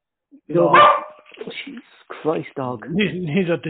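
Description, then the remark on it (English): A single loud dog bark rings out, then a man starts talking right after it. “Jesus Christ, dog.”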